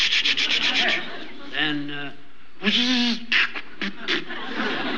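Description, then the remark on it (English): A voice imitates a car engine sputtering and choking as if it isn't getting any gas, with raspy bursts, a couple of sustained strained tones, then short choppy coughs as the engine dies; the sound is diagnosed as a clogged fuel line. “Well, choked up, it seemed to me, like it wasn't getting any gas.”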